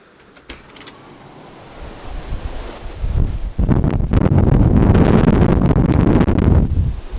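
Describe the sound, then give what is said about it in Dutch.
Storm wind buffets a microphone without a windscreen as the recordist walks outside, starting as a low rumble and swelling after a few seconds into loud, continuous roaring gusts that thump and distort the mic. “En voor wie zich afvraagt of zo'n windkap überhaupt wel helpt, doe ik nu een derde opname waarbij ik naar buiten loop zonder windkap op de microfoon.”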